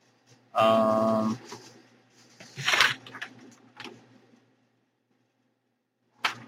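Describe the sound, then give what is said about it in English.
Paper being shuffled and handled as someone searches through notes for a name: a few uneven bursts of crisp rustling and crinkling, with a louder sweep in the middle, a quiet gap, then one more short rustle at the end. “You guys can hear me shuffling the paper.”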